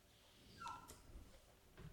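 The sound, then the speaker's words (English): A puppy whimpers in a short, high-pitched whine, wanting to get out of the room it is in, followed by quieter shuffling noises. It is fairly faint, and nobody speaks. “I have a puppy that is convinced it needs outside of the room it is in, and it's the worst when you have a puppy because like he has no I can't tell him anything.”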